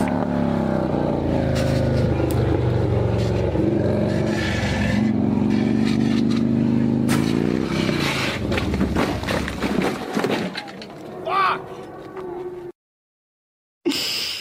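A motorcycle engine revs loudly and close for about twelve seconds, its pitch rising and falling with bursts of rough, windy noise, then cuts out abruptly into silence before a brief return.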